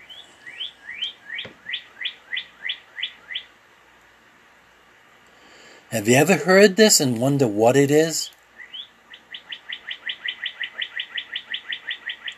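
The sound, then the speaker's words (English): A male northern cardinal repeats bright, clear whistled notes in rapid series, first a run of slurred chips, then after a pause and a brief spoken question, a faster accelerating trill of similar notes, loud. “It's a pair of birds that mate for life. And that's the red cardinal, and that's the male.”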